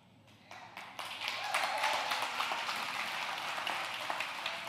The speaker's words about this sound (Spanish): No aplauda mucho que no sé que de aquí a 2 semanas esté en la misma vaina.